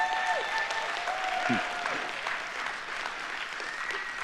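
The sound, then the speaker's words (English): An audience claps hands in steady, dense applause lasting the whole stretch, a broad wash of many overlapping claps holding an even loudness with a few faint tonal notes above. “It's all right to clap your hands, as long as it's not a golf clap.”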